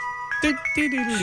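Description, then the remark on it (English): A tinkly ice cream truck jingle plays steadily in the background, its bright chiming notes sustained under a voice speaking over it in the foreground. “Children running outside to see the truck.”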